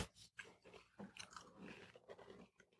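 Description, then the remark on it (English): Crunching as someone chews the crisp edge of a fully baked chocolate cookie, a series of irregular, crackly bites and grinding chews filling a few seconds with no talking. “Can you hear? Definitely the edge is crunchier, which I love, and it is definitely cooked in the center.”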